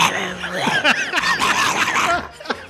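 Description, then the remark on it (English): A person's voice imitates a bear, giving a loud, continuous growling roar with wavering, swooping pitch that lasts a few seconds and ends in a short final burst. “Can you make a bear noise instead of a wolf noise?”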